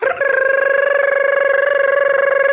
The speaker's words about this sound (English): It was a short and sweet gibberish alarm.